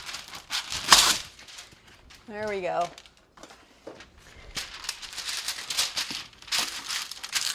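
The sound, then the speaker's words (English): Parchment paper is torn from a roll and crinkled to line a rimmed baking sheet, loud papery rustling and crackling in bursts, with a brief spoken remark partway through. “And line it with parchment paper. So I'm going to do that right now. It's going to be loud.”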